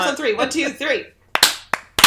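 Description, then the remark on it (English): A voice talks briefly, then a group claps three times on a count to sync their recording, each clap a smeared, ragged burst of several hands landing slightly out of sync, fairly loud. “Three claps on three. One, two, three. That's the sloppiest fucking clapping.”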